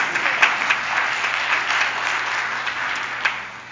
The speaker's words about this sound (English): we are so glad to have the choir back. Thank you so much. Let's give them a round of applause.